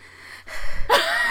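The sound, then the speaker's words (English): Heavy breathing right against the microphone: a hissy exhale followed by a sharp, gasping inhale, loud and breathy with no words spoken. “Just gonna heavy breathe into the microphone.”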